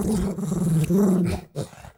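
A dog growls in a low, steady rumble, holding it through two long stretches with a brief pause between, then ending in a short final snarl.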